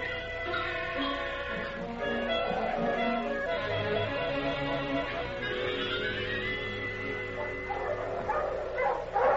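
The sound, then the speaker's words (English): A pack of sled dogs pulling a sled barks and yips excitedly in a continuous, overlapping chorus, with high whining calls rising above the steady barking. “I ain't pulling this thing. Talk to the dogs.”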